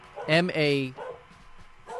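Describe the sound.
A dog, Mahler, lets out two loud barks in quick succession, followed by quieter background sounds and a hint of people talking.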